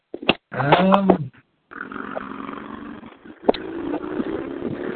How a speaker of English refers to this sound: Hold on a second. I wait for these motorcycles to go the fuck by my house. Can't hear anything.